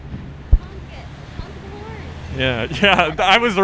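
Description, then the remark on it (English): A large truck rumbles past, a steady low engine drone filling the background while people start talking loudly over it near the end. “Anyways, let's do our advice segment now after this big-ass truck leaves.”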